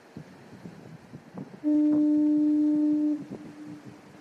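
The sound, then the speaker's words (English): A coastal fog horn, one of the fog signals decommissioned and turned off on January 11th, blares one long, deep, steady, loud blast of about a second and a half, rising above a low background rumble that continues before and after. “First of all, people are really upset about the fog horns being turned off.”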